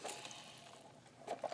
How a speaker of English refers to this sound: Hold on, sip break.